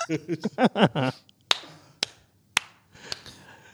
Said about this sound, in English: I was clapping.